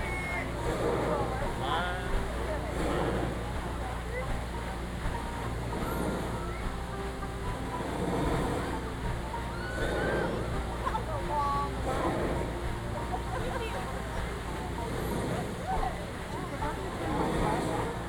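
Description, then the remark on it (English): Steady rushing and splashing water from the newly reopened Splash Mountain log flume ride, a continuous wash of noise with muffled voices of people talking underneath. “There's Splash Mountain off to our left. Newly reopened.”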